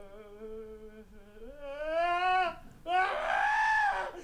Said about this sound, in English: Yeah, it's just a scream. There are a lot of screams actually on this.